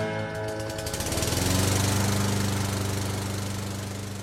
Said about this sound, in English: And so I just keep on singing as I mosey along, and the lawnmower goes off and the lawnmower goes on. And so the lawnmower goes off and the lawnmower goes on.